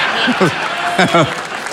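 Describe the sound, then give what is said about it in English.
A crowd claps steadily in a dense wash of applause, with men in the audience clapping, and a few short bursts of laughter or vocal reactions rising over it. “Yeah, the guys are clapping.”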